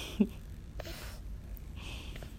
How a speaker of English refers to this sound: You want to know the biggest joy in my life right now? It's this little girl you hear breathing in the background.